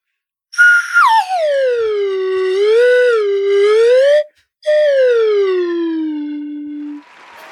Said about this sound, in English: Yeah, I took my slide whistle out of storage, and I'm going to do a quick interpretation of their playoff odds graph over the course of the season.